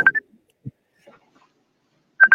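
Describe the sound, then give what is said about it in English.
A mobile phone rings with short electronic beeping tones, one brief burst at the start and a quick run of three beeps at the end, with near-silence in between. “Is that my phone coming through? No, it's someone from the UK hitting me up.”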